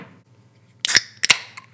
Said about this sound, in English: Do you want me to crack open Oktoberfest? I really do, yeah. Because it's September 6th or whatever day it is. Yeah. Yeah, okay, hold on a minute. Well, they got the levels of carbonation right. A little more carbonation. Just a little psst.